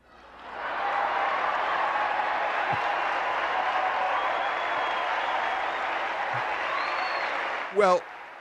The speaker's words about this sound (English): Well, there was cheering on the floor.